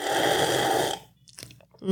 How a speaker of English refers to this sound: I have about 3 hour old coffee. Okay. Sitting right here in this cup. Well, how is it? Go ahead and I'll take a sip.